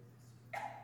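A single quick sneeze bursts out abruptly after a short quiet stretch, fairly soft overall, with a faint steady hum underneath and no talking.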